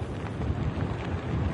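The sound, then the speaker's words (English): Steady roar of wind and heavy rain from the outer bands of Tropical Storm Nicholas on the Texas coast at Galveston, churning up the surf: a dense, unbroken hiss over a deep buffeting rumble that gusts slightly louder and softer, with no voices. “You can see the wind and the heavy rain kind of bringing and churning up the surf right now, and it's only expected to get worse”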